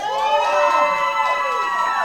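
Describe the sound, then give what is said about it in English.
A crowd cheers and whoops loudly for about two seconds in a show-of-applause audience poll on whether a guest speaks Samoan, his team cheering, many high voices overlapping in a steady, dense roar with rising and falling yells and no speech. “I gotta be honest, his entire team just cheered, so that kind of gave it away.”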